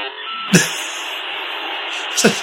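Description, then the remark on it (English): A steady electronic hiss of a file being transmitted over a line runs throughout at moderate loudness, with a couple of brief clicks cutting in near the start and end. “That hissing noise suggests it's on its way.”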